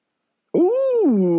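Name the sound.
dog barking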